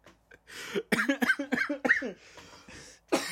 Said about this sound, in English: Sorry for the cough there, listeners.